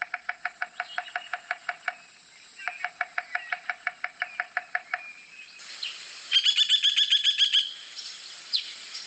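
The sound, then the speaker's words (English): A bearded woodpecker drums to communicate, in fast, even rolls of sharp knocks, several bursts in a row separated by short pauses, with brief bird chirps mixed in and no voices. “Listen again to the drumming. This is what I talked about when they actually drum and communicate.”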